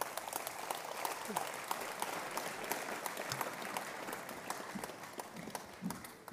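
Sustained audience applause as a man is called up to the front, a dense, steady patter of many hands clapping at an even level throughout, with a few scattered sharper claps standing out near the end.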